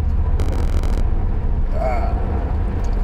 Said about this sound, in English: We're driving and we're recording, and it's Chicago traffic, so yep.